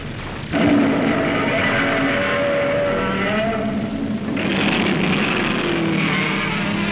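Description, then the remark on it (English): A motorboat engine on a lake catches after a brief pause and roars loudly and steadily, its droning pitch wavering and surging midway through, with no voices. “Try the engine again”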